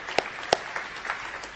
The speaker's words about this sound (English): As a matter of fact, there are many of you that are sitting in our congregation this morning that exemplified a courageous person with your own life. Therefore, let's give every one of you guys an applause right now. Many of you.